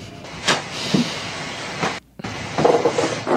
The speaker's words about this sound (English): So it's just ladies farting. Yeah. Ladies can fart too